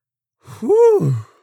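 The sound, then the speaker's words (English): A single big, drawn-out yawn, fairly loud, its voiced tone swelling upward and then sinking before trailing off into a breathy exhale. No one speaks. “Whew! Ah, super big yawn.”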